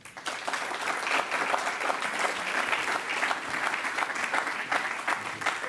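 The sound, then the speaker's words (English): An audience at the Stanford Africa Forum claps steadily for several seconds as a speaker is brought up, a dense, even patter of many hands with a bright, crackling texture and no voices standing out. “So if you could just round of applause, sort of bring up Mr.”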